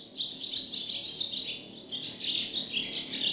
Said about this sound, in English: The family noticed the bird with the crooked leg sitting on the clothesline and singing to them.